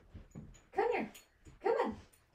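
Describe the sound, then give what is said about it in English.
A dog whines in two drawn-out, rising-and-falling cries about a second apart, fairly loud, with soft scuffling between them, as it tries very hard to get in. “I got a doggy that's trying very hard to get into here.”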